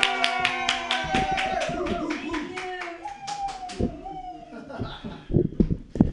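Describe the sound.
A burst of enthusiastic hand clapping from a small audience, steady, with whoops and cheering voices mixed in, as a performer is introduced at a show also heard on MutinyRadio.fm, fading into people talking near the end.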